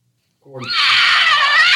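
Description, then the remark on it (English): A mountain lion (cougar, Felis concolor) screams after a brief silence, a loud, harsh, sustained shriek that rises and holds steady at a piercing pitch, unbroken until the end. “And that is a mountain lion screaming.”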